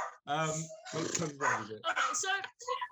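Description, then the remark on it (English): Barking, said to come from Dexter, a dog who is part Cocker Spaniel, that sounds like a human voice imitating a dog: five drawn-out, growly woofs in quick succession, fairly loud with no other sounds around them. “What if I could guess by the bark? I'm like, ooh, that's he's part Cocker Spaniel, but the other part we don't actually know because his mom was pregnant when they found her”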